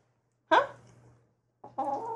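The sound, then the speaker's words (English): A rooster named Sequoia at Early Bird Acres lets out a short, clipped crow in two quick bursts, the second rising into a sustained note that cuts off abruptly, heard alone at moderate volume. “Oh, there's a little crow.”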